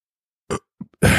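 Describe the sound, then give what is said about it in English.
A loud, low, rumbling burp erupts after a couple of brief throaty sounds, its gravelly croak cut off abruptly. No one speaks. “Sorry, it happens on this drinking show, you burp sometimes.”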